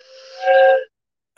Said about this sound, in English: About my train whistle.